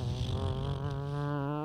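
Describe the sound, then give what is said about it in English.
A bus engine drone, apparently imitated by a voice: a steady, buzzing low hum rich in overtones, holding one pitch for under two seconds with no other talk. “That's the bus.”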